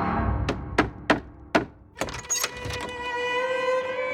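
Four firm knocks on the wooden door of a small brick home, evenly spaced, followed by a clatter of rattling thuds as a young man opens it and a steady tonal hum that lingers to the end.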